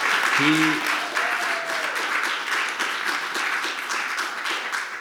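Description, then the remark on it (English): A crowd applauds steadily for several seconds, a dense, even patter of many hands clapping, with a short voiced whoop rising above it near the start. “This guy, man, like, round of applause, please, for this guy.”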